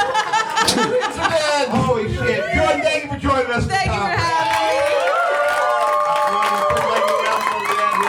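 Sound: audience cheering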